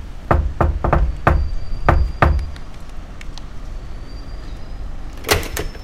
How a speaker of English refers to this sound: I'm just about to knock on the door of the flat where Miss Cynthia Rothrock is staying in London, while she's appearing at the World of Kung Fu exhibition at Earl's Court. So here goes.